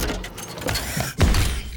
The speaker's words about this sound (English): The robot chewed on the empty milk carton as it walked in circles, making clanking noises.